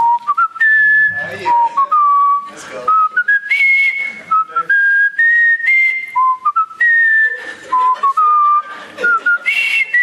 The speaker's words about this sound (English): I'm going to whistle the tune because this is classic Indiana Jones.